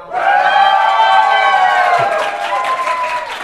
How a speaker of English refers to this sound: And can we get like a cheer or a shout? Pretend that you guys are like 1,000 people. Yeah. And the people that are at home have no clue what they're missing out. So can we get like a cheer or like an applause?